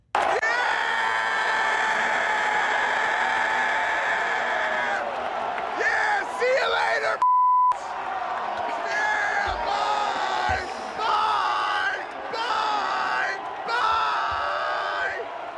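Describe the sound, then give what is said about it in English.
The Boston basketball crowd inside TD Garden roars and cheers loudly and continuously during game three on Wednesday, as Draymond Green fouls out in the fourth quarter. The noise breaks briefly before rising again into repeated rhythmic chanting bursts, with yells and whoops throughout. “Take a listen, Chantel, to this video so you can really see the enthusiasm the Boston crowd displayed on Wednesday.”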